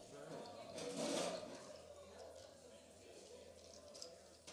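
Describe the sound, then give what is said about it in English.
Liquid spills with a brief splashing rush near the start, then settles into a soft, steady dribble and drip. Quiet, with a faint, muffled background hum throughout. “All right, so we had a little spillage, a little dip and drip.”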